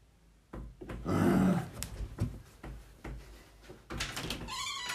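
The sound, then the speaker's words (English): Someone bangs on a door again and again in loud, irregular thumps, with a rattling scrape in between and a short high-pitched whine at the end. “Dude, you can't bang on the door.”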